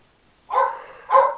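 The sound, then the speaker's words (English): Two quick, sharp barks in close succession from a dog excited about being taken for a walk, loud, with an eager edge and no other sounds around them. “Your dog, Brian's agreeing too”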